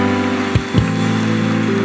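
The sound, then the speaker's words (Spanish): An audience applauds loudly for Jesus in a dense, continuous wash of clapping, with sustained musical tones humming underneath and two brief low thumps partway through. “Dale ese fuerte aplauso a Jesús.”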